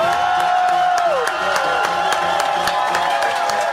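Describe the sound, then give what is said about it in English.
A large crowd at the Shannon in the Morning 1000 Show Spectacular on CBS FM cheers loudly and steadily, with scattered claps and a high, sustained whistle that slides down in pitch partway through. “What a crowd!”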